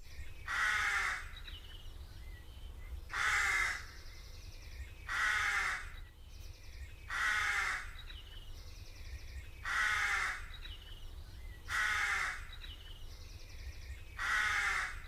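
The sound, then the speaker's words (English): Harsh crow caws repeat seven times at a slow, steady pace, roughly two seconds apart, loud over a constant low background hum. “He could only dream of crows.”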